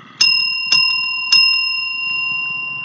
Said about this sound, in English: Okay, I'm going to ring my bell, and then I'm going to switch to spoilers.